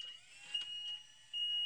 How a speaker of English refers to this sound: That sounds like a scissor lift. Great. It is a scissor lift. I taped that live in an event this weekend.